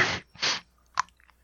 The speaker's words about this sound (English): Did you just down a cough drop? I didn't just down it. I'm sucking on it.